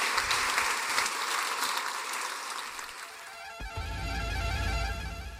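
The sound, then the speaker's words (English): An audience applauds Sir Chris Hoy, a dense wash of sustained applause with no single claps standing out, holding steady for several seconds before a low rumble joins in partway through. “Put your hands together for Sir Chris Hoy.”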